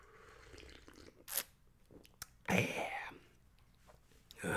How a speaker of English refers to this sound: Quick sip of coffee. Coffee break, boss. Don't mind me, boss.